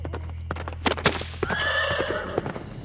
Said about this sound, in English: gave the horse's reins a hearty shake, and they were off, galloping through the cobblestone streets at a breakneck pace.